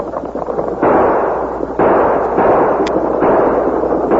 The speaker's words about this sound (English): As Morgan grabbed his shotgun, Sachs and Gloomy fired.